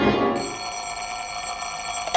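A telephone bell rings in one long, steady metallic peal, bright and high-pitched, with no voices, ending in a short click.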